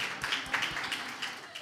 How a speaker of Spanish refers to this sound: Un aplauso para los valientes.